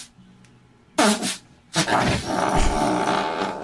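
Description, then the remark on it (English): A loud, sputtering fart from a woman bursts out in two blasts, the second longer and raspier, with a hollow reverberant echo inside a shed. No talking. “Here comes the next fart.”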